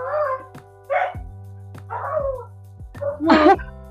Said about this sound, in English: He might be barking at something else, who really knows. I don't know. It's probably a squirrel.